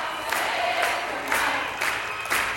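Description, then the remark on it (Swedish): A large concert crowd roars and cheers continuously, with rhythmic swells of voices that sound like an audience singing along, dense and reverberant throughout. “Och så kunde jag bara plötsligt se att publiken sjunger med.”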